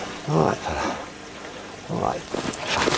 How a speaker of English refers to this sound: Sounds like some water in the background. I think he fish hooked himself.